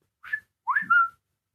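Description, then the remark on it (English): A person whistles a short two-part tune, one brief rising note followed by a slightly longer sliding phrase, imitating a phone's text-message alert tone as a sound effect for others to guess. Clear, with no talking. “Oh, it's like a text alert phone. an alert. It was an attempt at it.”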